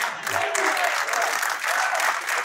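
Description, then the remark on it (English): An audience claps steadily throughout, a dense, sustained wash of many hands at fairly even loudness, with no voices standing out. “Why are y'all clapping at that?”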